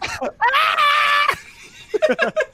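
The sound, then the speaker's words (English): A voice imitates a long, high-pitched scream held for nearly a second, loud, followed by a few quick choppy vocal bursts. “His scream is the funniest thing.”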